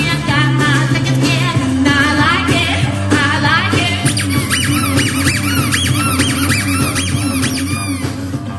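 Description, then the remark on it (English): A squeaky toy instrument honks and warbles in bent, wavering squeals over a steady live band groove at a New Year's Eve show at The Earl in Atlanta, loud and continuous throughout, with sliding high-pitched squeaks becoming denser toward the end. “All right, who's playing the little squeaky?”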